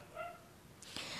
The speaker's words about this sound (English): Oh my gosh, I'm so sorry, guys, if there's, like, dogs barking. This is why I don't film in the daytime. I'm so sorry again. Anyway, I hope you don't hear that, but I'm gonna try my best for you not to hear that.